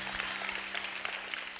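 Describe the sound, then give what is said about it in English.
A church audience applauds for King Jesus with steady, dense clapping that holds at an even level throughout, with a constant low hum running underneath and no voices. “Now can we applaud King Jesus?”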